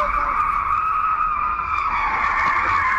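A speeding car's tires skid and squeal in a loud, sustained screech lasting the whole moment, with engine rumble underneath and a faint voice in the background.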